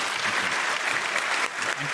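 An audience applauds steadily, a dense, continuous patter of many hands clapping at an even loudness for the full two seconds, with no voices standing out.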